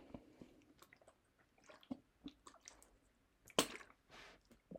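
Quiet sipping of water from a plastic water bottle: small wet slurps and swallows, soft mouth clicks, and a sharper crinkle of plastic partway through, with no talking.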